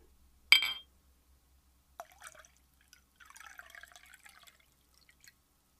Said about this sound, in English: Let's pour some of this. Ready? Here we go. Here's some whiskey pouring ASMR. I'm going to move the microphone down. Right so you can hear this deliciousness. Here we go.